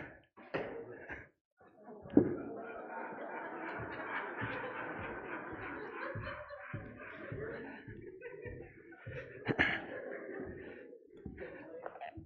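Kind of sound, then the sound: impact, arrow shot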